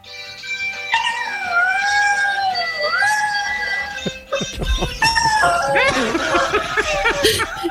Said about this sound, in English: So Chris O'Dowd has a dog apparently called Potato, and it can sing the theme song from The Office, the US Office, and here he is performing it.